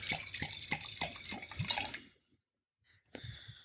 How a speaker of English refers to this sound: And we are about to open, again, a lovely Jones of Washington. Syrah. And I'm going to pour that.